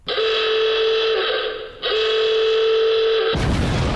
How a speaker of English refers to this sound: There's a timer. We don't know how long is on that timer or when it runs out. If you haven't stopped and the timer goes off, you lose everything. Everything. You'll know when the timer is up because you'll hear this.